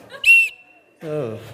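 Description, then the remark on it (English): A single short, shrill blast from a cheap toy whistle kept in a first aid box, loud, fading into a thin lingering tone before a man's voice starts speaking. “Yeah, I have a whistle in my first aid box.”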